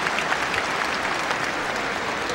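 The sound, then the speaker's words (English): A crowd applauds the community of Sheffield steadily, with dense, continuous clapping filling the space at a consistent loudness and no voices standing out. “Put your hands together for Sheffield.”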